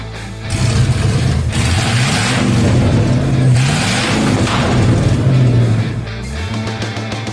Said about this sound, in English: Those car sounds are courtesy of Devin and his LS-swapped Volvo 240, friend of the show. Great car, by the way.